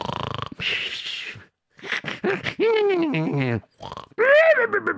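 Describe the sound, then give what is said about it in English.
A voice mimics a run of snores made by sleeping people, in different styles: rough throaty rattles, wheezy breaths and a rising, whining snort, each burst loud with short pauses between. “He heard all the different forms of snoring.”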